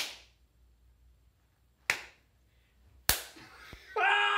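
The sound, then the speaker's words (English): Three sharp, loud hand-on-hand slaps land a second or so apart, each a crisp smack with a short ring-out, as two people take turns slapping each other's outstretched hands in a game, and someone cries out right after the last one. “And you're gonna slap it like that, go taking turns until somebody yells mercy.”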